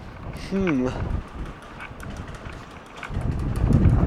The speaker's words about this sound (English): Well, okay, it's really windy.